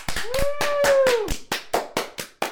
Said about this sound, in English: Everyone give a clap.